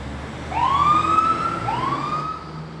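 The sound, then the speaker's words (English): An airport fire service crash alarm siren at Liverpool John Lennon Airport wails in two rising sweeps during a test turnout, the second overlapping the first's fading tail, sounding fairly loud above a low background rumble with no one speaking. “They give us the call over our what we call our crash alarm”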